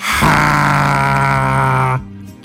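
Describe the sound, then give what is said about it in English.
A Chewbacca talking toy doll lets out one loud, sustained guttural growl, low and raspy with a steady pitch, lasting nearly two seconds before cutting off abruptly into a brief fading tail. No one talks. “It is a Chewbacca. That's the noise it makes.”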